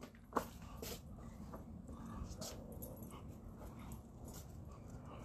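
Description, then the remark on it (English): A female dog in a garage gives one sharp bark near the start at a man handling a trash can, followed by a few fainter yips and whimpers against a steady low background rumble, with no one talking. “Oh, she's barking at you.”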